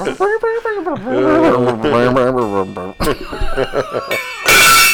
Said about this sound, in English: See, I told you. That's the gong. I told you. That's the gong, folks.